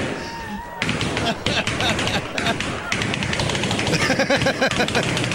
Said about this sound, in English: this is the person that set the Guinness World Record. We were talking about this earlier. The Guinness World Record for popping 200 balloons with a nail. Ready, set, go! Sounds like a machine gun.